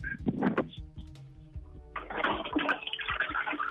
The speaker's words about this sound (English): All right, it's TV, and flush the toilet again. Flush the toilet, quick,